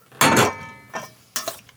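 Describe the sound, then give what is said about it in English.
Hot vinegar poured over pickles in a glass jar: three short, bright splashing bursts with a faint glassy ringing, the first the loudest, with no talking. “It's pretty common in a lot of quick pickles to heat up the vinegar. There we go. Boil. Pour it over.”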